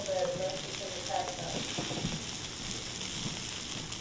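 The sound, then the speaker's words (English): Pork tenderloins, with green beans and apples, sizzle in a cast iron skillet with a steady, dense crackle and hiss that holds constant for a few seconds, fairly loud, with no one talking. “In our sizzling skillet”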